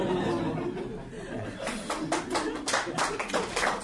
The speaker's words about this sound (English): Yeah, I mean, didn't need to clap, but it's good of you to.